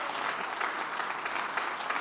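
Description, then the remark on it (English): A church audience stands and claps hands to rejoice during a gospel sermon, sustained, dense applause, a steady wash of many overlapping claps with no clear beat, fairly loud and unbroken for the whole moment. “I want you to stand to your feet and clap your hands and rejoice, because there's power in the gospel.”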